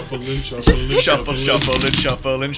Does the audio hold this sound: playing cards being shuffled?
yes